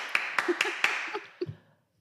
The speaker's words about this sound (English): I love how you're clapping yourself. Well, you're not clapping for me.